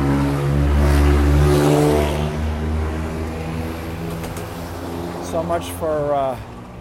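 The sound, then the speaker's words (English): A loud car engine revs hard in Los Angeles, California, its roar peaking early and then fading as it passes, with brief indistinct voices near the end. “So much for California exhaust laws. You just heard that they're not enforcing that in Los Angeles.”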